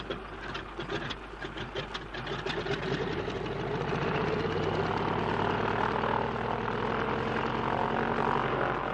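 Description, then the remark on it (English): Stone-cold aircraft engines sputter into life as they are revved, then settle into a loud, steady mechanical drone with a rapid rhythmic chatter, growing fuller and sustained over the seconds with no voices. “if only your engines don't seize, they're stone cold, Bertie. I can't help that old trout. Don't waste time revving.”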